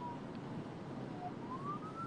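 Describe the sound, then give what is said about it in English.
An ambulance siren wails faintly, its pitch rising slowly over a steady rush of wind and street noise, with no one talking. “Sorry, an ambulance is passing me.”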